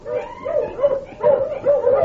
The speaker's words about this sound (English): About 10 miles from town, I was mushing along the trail, and suddenly I heard a dog.